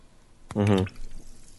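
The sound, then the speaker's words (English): A short splash of water being poured, lasting under half a second with a ringing, resonant tone, followed by quiet background noise. “Sorry, get some water.”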